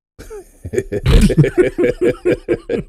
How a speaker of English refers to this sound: There's a bullfrog outside my window, man.